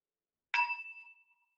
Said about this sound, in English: The hearing capacity can hear the sounds of the bell. And now still existence, even though the sound of the bell has dissolved, but the hearing capacity is still here.